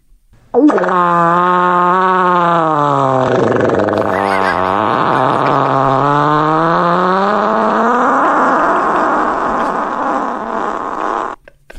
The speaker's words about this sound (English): Ain't ever hear a fart hit third gear is the caption.